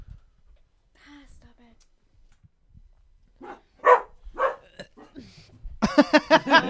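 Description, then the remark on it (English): Loud burps after a quiet stretch from a person who has just sipped an Oktoberfest beer: a pair of short guttural belches, then a longer, rattling one at the end. No one speaks. “there's some more burps for the show.”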